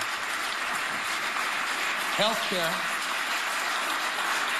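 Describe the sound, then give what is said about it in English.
Steady, dense applause from an audience at Gavin Newsom's State of the State speech fills the whole clip, a loud hiss of many hands clapping, with one man's voice briefly speaking over it partway through. “Stop clapping.”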